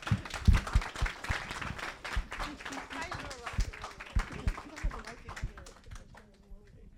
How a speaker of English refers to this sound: A round of applause to all the students, please, all the students.